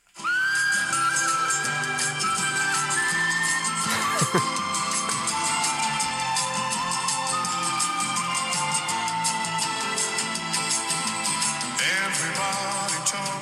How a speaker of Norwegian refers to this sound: Han kunne virkelig plystre, og da skulle det ikke være noen tvil om hva han var kjent for.